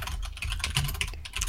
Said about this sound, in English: Alright. Furious typing.